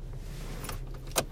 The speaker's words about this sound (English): Excuse me while I shut my car off.